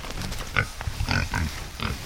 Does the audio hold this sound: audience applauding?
no